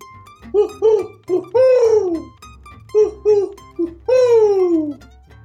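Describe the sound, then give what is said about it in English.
Mourning dove cooing, two phrases a few seconds apart, each a few short soft coos leading into a longer, drawn-out, falling coo, clear over a faint low hum. “This is our 11th episode, and I realized that boiled owl wasn't an owl. It was a mourning dove.”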